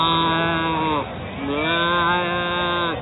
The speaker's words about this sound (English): Somebody's just turned up with a goat. What?